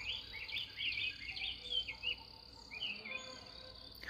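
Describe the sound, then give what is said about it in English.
Birdsong on a farm with bright, rapid chirps and warbling trills repeating across the whole stretch, over a steady hiss of insect-like background noise. No one speaks. “So even though I can hear some cars on the highway nearby, the birdsong has reminded me to be full of joy.”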